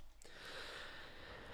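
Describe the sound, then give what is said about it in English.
Fenway the dog sniffing around: a soft, breathy snuffling hiss that starts abruptly and carries on steadily for over a second. No one talks. “Anyway, Fenway's having a wee sniff around.”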